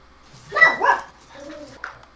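Two loud dog barks in quick succession, followed by a softer whining sound and one short final yelp.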